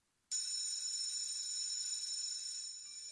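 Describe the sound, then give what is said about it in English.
After a brief moment of quiet, a school bell bursts into a loud, shrill, continuous electric ring that holds steady for nearly three seconds, with no voices present. “It was a Saved by the School Bell.”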